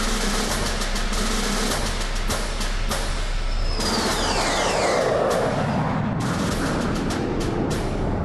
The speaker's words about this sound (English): Slicing through the frigid air, two fighter planes rocket above the frozen wasteland.